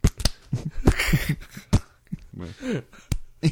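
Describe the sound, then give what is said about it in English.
Several sharp, loud slaps of a hand on a freshly shaven face, imitating meat hitting a counter, spaced irregularly, with brief voiced sounds and chuckling between the smacks. “just slapping his freshly shaven face.”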